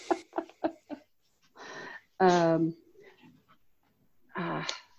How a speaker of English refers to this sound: Sorry, my youngest dog rescue was barking, so I let him in.